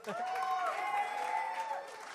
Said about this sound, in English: You can clap. It's okay.